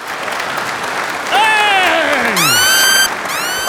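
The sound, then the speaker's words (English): Steady crowd applause for the host at the start of the show Highly Cultured fills the whole clip, with loud voices shouting and whooping over it, their cries sliding up and down in pitch. “Clap for me!”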